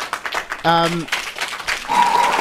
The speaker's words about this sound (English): Let me get a round of applause. Is there an applause button? Come on, man. There you go.